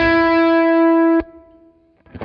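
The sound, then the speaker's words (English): A single loud, buzzy sustained note from an instrument played through a delay pedal on its tape setting rings out, is cut off by a sharp click, then its echo lingers and fades quietly, modulating and wobbling slightly in pitch. “Right, in the tape setting, you can hear it modulate, so you can actually hear the signal. The echo actually changing pitch. It wobbles a little.”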